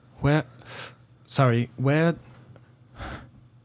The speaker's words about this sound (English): She kind of gasps a little bit when she sees your shield.